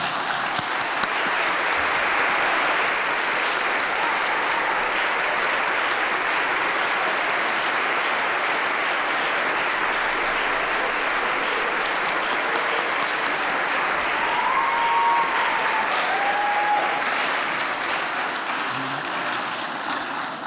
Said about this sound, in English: And if you identify as Latino or if you are Latino, please stand up. And can we give them a round of applause for them being so brilliant?